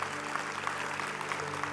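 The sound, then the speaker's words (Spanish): A seated audience claps steadily, a dense wash of many hands with no breaks, holding an even moderate level throughout, with a low steady hum beneath. “Ahí mismo sentado, un aplauso.”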